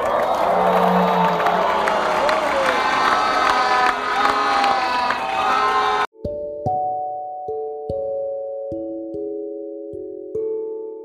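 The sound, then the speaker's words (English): An audience gives God a big shout and a big clap, loud in a dense, roaring burst for about six seconds, then it cuts off abruptly and a run of sustained, bell-like keyboard tones follows. “And give God a big shout and a big clap.”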